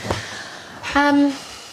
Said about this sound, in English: I need to blow my nose, so that's me being honest. Okay, we'll face away from the mic.